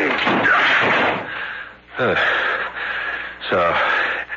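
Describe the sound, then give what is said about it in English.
A locked apartment door is battered in with three heavy, booming blows spaced a second or two apart, each crash ringing out loudly amid strained, effortful vocal sounds. “Door is locked. Break it in.”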